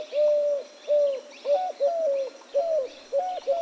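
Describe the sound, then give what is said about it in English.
A Eurasian collared dove sings, repeating soft, hollow coos in a steady rhythm of short phrases, while other small birds chirp faintly in the background. “Doves are smaller in comparison to pigeons, with the collared dove being one of the larger ones.”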